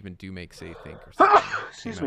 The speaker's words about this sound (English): Excuse me. Oh, talk about peaking. Gesundheit.